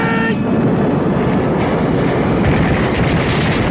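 A helicopter roars over a hot landing zone during incoming fire, a loud, steady, rumbling drone with heavy low-end churn and rushing wind noise that fills the whole few seconds without letting up.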